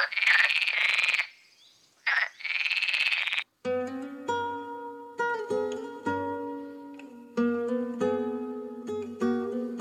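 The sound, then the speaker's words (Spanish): A pet frog croaks loudly in a few raspy, buzzing bursts, then a bright tonal melody of plucked-sounding notes takes over for the rest. “Ella le croa y le ayuda con los deberes, y él le peina a diario.”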